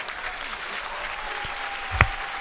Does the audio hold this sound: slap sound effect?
no